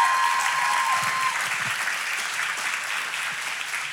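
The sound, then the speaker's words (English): A church audience claps steadily throughout at the announcement of a new church staff member, a dense, even wash of many hands that holds at a fairly loud level and tapers only slightly toward the end, with no voices standing out. “Just maybe hold your applause till you hear the, another puppet fan.”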